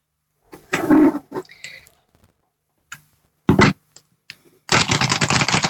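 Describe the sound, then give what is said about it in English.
Tarot cards being shuffled: a few short papery flicks and slides, then a louder, sustained rapid fluttering riffle at the end. “Sorry if that shuffling doesn't translate very nicely over the podcast.”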